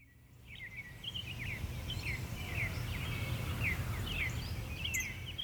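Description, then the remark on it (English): Woodland ambience: scattered high, quick bird chirps and cricket-like trills repeat throughout over a steady low rumble, moderately quiet, with no one speaking. “It starts in the woods for me.”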